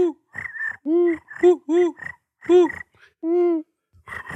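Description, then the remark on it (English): A person imitates crickets with a string of short, voiced chirping bursts, about eight in quick succession with brief gaps, sounding somewhat croaky and froglike. “Someone do crickets. Does anyone do cricket noise?”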